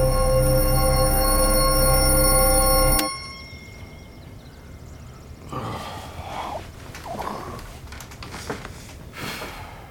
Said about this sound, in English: Why do the bells keep ringing? What bell? The church bell? I don't hear anything. Seriously, you don't hear that? Seriously?